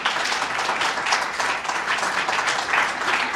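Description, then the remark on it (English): A crowd applauds steadily, many hands clapping together in a dense, continuous wash of sound that stays fairly loud and even for the whole stretch, with no voices standing out. “Go ahead and applaud.”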